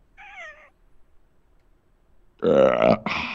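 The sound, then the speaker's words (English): A short, thin, high-pitched squeak, then after a pause a loud, drawn-out, rumbling burp lasting about a second, with a brief break near its end. No talking. “On that note, excuse me.”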